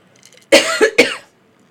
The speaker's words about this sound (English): That is just a regular cough, just to clarify. Yeah. That wasn't, we're fine. That wasn't dry. We're all fine. We're all good. That was not dry. It was just normal.